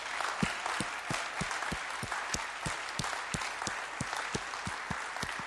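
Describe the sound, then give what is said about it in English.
A crowd applauds steadily for people standing up who are involved in the listed projects, many hands clapping in a dense, continuous wash with a few sharper individual claps standing out at a quick, regular pace. No one speaks. “Can we give them an absolute round of applause?”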